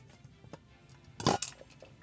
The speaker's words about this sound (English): excuse me, I'm taking a sip of water in a very loud container. Hold on.